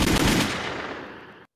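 A loud burst of rapid gunfire, a gunshot sound effect, rattles for about half a second, then trails off into a fading, echoing tail. No one speaks.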